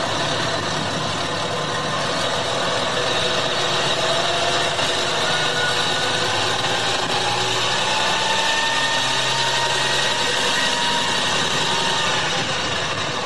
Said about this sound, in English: All right, beautiful noise. What's this truck?